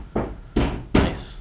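Three heavy thuds strike a door at a steady pace, each a loud, booming bang with a short ringing tail, with no voices.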